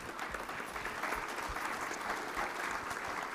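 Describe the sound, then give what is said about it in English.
A crowd at Real Life Church applauds the moms on Mother's Day with steady, dense hand clapping that holds an even loudness throughout, many hands blending into a continuous wash with no voices standing out. “All right, we give our moms another big hand clap, everybody.”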